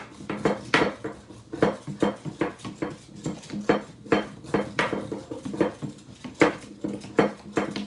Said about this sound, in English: And as you can see, it's doing its job. Pogo Whisk is working. It's not just a gimmick, it actually works.